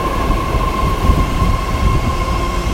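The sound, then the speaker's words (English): A train rolls into a station with a steady, heavy low rumble and a thin, sustained mid-pitched whine running through it. The loudness holds even throughout, and no one speaks. “Hey, my wait is just starting and the train is already approaching, so I think I would say that I had no minute wait.”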